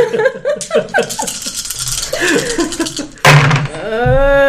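A rapid clatter of several ten-sided dice (D10s) being rolled for hit points, rolling and knocking together in sharp overlapping clicks under excited voices, ending in a loud, drawn-out vocal exclamation.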